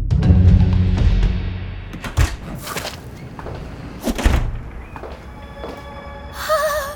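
The back door of a soda shop creaks open with a low groan, followed by a couple of solid thumps as it swings shut and latches, with a faint tonal whine at the end.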